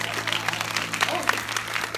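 An audience claps steadily in a dense, crackling wash of applause, with a few brief whoops and cheers rising above it throughout.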